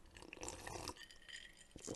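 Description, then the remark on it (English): A few light, ringing clinks of glass against glass as bourbon is sipped, scattered irregularly over a soft background of handling noise and faint liquid movement, with no talking. “Just to cut back to it real quick, may I have a sip of this bourbon?”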